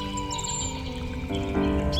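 bird, birds chirping

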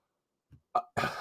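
human body sound, cough

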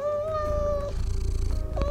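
animal, cat meowing

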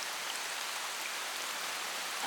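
nature, heavy rain pouring down

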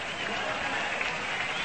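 crowd, ballpark crowd applause

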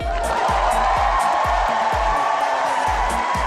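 crowd, crowd applause

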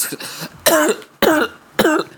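human body sound, coughing

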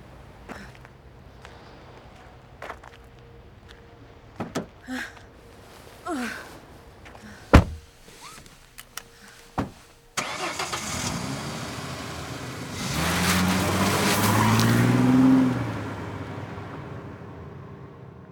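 vehicle, getting into car

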